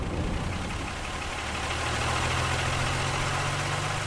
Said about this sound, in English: Okay, so it is a bus. But if you've ever been lucky enough to ride on one of the nation's vintage buses or coaches, you'll know that they do, quite literally, transport you to another place and time.